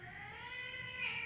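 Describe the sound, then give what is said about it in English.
Two cats, a big one and a smaller one, play-fighting and biting each other, with one continuous, drawn-out yowling growl that swells slightly toward the end, heard on its own without any talking. “Would you guys stop biting on each other?”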